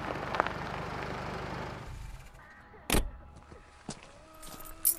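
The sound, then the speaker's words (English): A car pulls into a driveway: its engine rumbles for a couple of seconds, then cuts off, followed by a sharp thud like a car door and a few scattered clicks in the quiet. “they heard the sound of their father's car pulling into the driveway.”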